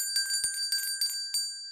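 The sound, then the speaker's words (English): Small servants' call bells at the Octagon House in Washington, D.C. ring in quick succession, each bright metallic strike landing roughly every third of a second over a shimmering, sustained ring that slowly fades. Clear, with no voices. “The other well-known ghost story is the mysterious ringing over the servants' call bells.”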